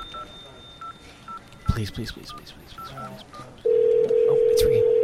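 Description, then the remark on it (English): A series of short telephone keypad tones is dialed, with some clicks and faint voices, then a loud steady ringing tone of the call to the Massacre Radio voicemail comes through the line and holds to the end. “Oh, it's ringing.”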